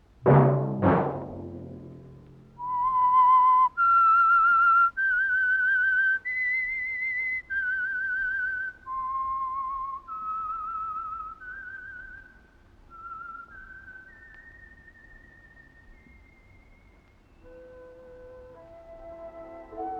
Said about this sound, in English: That whistle be your signal for the Signal Oil program, The Whistler, each Wednesday night at this same time.